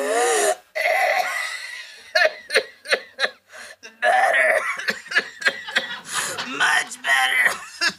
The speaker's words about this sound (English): Hacking, wheezing, coughing fits doesn't mean you call it quits.